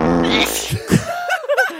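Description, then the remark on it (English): A fart sound effect: a low, buzzy, sputtering blast for about a second, then a couple of short puffs and some squeaky, rising tones. Loud, with no talking. “Well, because this did happen earlier in the week on our show where we played this sound effect of a sneeze and a fart consecutively.”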